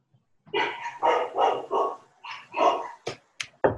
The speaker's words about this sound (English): The dog says no.